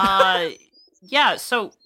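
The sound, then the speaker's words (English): A loud call from a parrot on a person's shoulder: one drawn-out, raspy squawk, a short pause, then two quicker squawks that bend upward in pitch, with nothing else behind them. “You got a parrot on your shoulder.”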